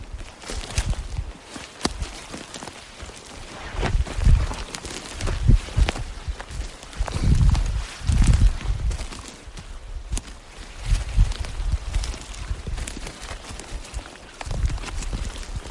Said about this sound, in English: Well, right there's the horses.